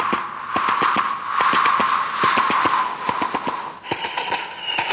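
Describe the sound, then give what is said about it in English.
A voice imitates an old-fashioned steam train, producing fast, steady chuffing bursts over a continuous hissing tone that keep going for the whole stretch, fairly loud and on its own. “I sound that this is the way in which a train goes along. This is an old-fashioned train.”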